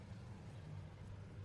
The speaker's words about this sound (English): But a lot of cars driving by. Ooh, 3000 GT.